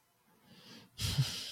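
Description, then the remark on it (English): A single sneeze: a rising, breathy intake, a brief pause, then a sudden loud, hissing burst of air that cuts off quickly. No one talks. “Sorry, I had to sneeze.”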